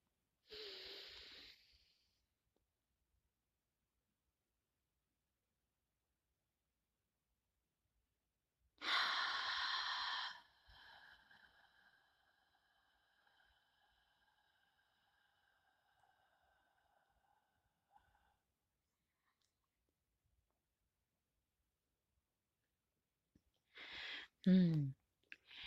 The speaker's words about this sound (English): And notice air coming in from your nose and then lungs and then circulated in your body and then releasing it from that mouth. Consciously. Ready? Let's go.